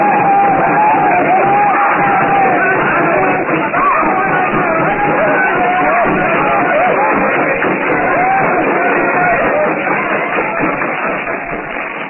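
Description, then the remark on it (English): A crowd leaps and yells without pause while circling a blazing hut set as a fire trap in a compound. Many voices overlap in a loud, dense roar, with occasional higher cries rising above the steady din for the whole stretch. “The blacks leap and yell as they circle the fire trap.”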